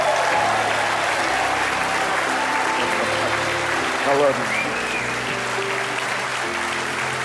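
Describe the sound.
A church audience at Living Word applauds steadily, welcoming a speaker to the pulpit, a dense wash of clapping that holds an even level throughout, with a few voices calling out over it and one person speaking briefly.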